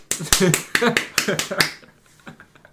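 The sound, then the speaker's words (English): A person imitates duck feet slapping with a quick, uneven run of about eight sharp, loud smacks, followed by a couple of fainter slaps as the rhythm trails off. “The slapping. It would just intimidate everyone, just like its feet.”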